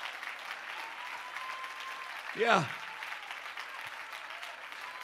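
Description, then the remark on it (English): An audience claps steadily in praise of the Lord throughout, a dense, even patter of many hands, while a man's voice briefly calls out over the clapping. “Oh, clap your hands unto the Lord and give him praise.”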